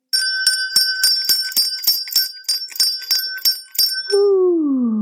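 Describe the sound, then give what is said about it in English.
A bright meditation bell is struck rapidly over and over, its clear ringing tones sustaining loudly throughout, before giving way to a lower, wavering hum at the end. No one speaks. “I'm going to ring a bell to call in our well ancestors.”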